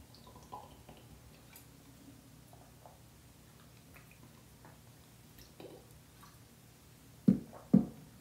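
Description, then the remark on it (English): Soft sipping of water, faint wet slurps and small mouth sounds, ending with two louder gulps in quick succession. No one speaks. “While I take a sip of water, you can write what you think it is in the comment.”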